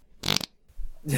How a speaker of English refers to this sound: we replaced it with a fart noise half the time